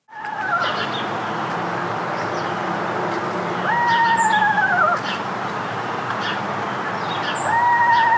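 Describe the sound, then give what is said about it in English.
Screech owl calls: three quavering whistled whinnies, each holding a steady pitch before sliding downward, spaced a few seconds apart over a constant low background rumble. “They have two calls. One is a trill, and the other is a whinny.”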